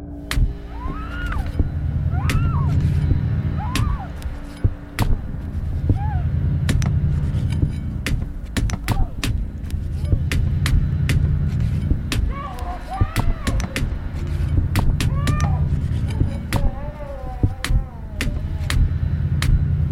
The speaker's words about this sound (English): we want to share a fake audio clip that we created of what 48 stabs would sound like, just so you can get an idea of how heinous and brutal this murder was.